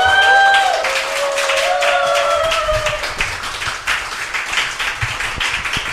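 An audience breaks into sustained applause, a dense crackle of many hands clapping steadily for several seconds, with a few whoops and a brief whistle-like tone rising over it early on.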